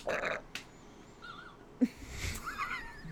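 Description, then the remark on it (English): A short, muffled burp with a fizzy, buzzy quality, low and fairly quiet, surrounded by soft breathy wheezing sounds and a brief click beforehand. “It was a muted trumpet burp.”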